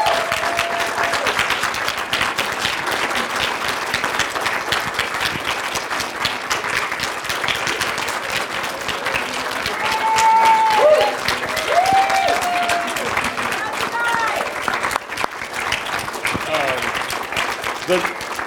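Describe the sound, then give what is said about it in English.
A crowd applauds steadily for the whole stretch, dense clapping with a few cheers and whistles rising briefly partway through; the audience stands to applaud clergy on Clergy Appreciation Day. “On October 10th, yes, yeah, let's stand up and give them a round of applause.”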